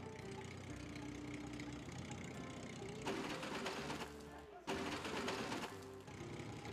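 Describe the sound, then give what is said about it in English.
A video game hot rod tractor engine idles with a buzzy, mechanical drone, then revs up in two louder bursts, with electronic game tones layered over it; the tractor is selected for farming in a mobile farming game. “And with another tap and hold, it will automatically select my hot rod tractor.”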